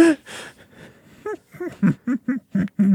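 A sharp, breathy dramatic gasp close to the microphone, followed by a series of short, wheezy voiced breaths in an uneven rhythm, with no words spoken.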